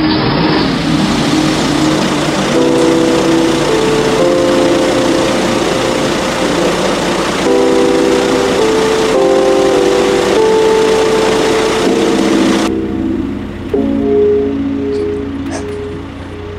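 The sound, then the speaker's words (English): Truck engines start up and run in a loud, continuous rumble with a droning, shifting hum, then settle into a lower, steadier idle near the end. No one speaks. “come on, the trucks are starting, let's get out of here.”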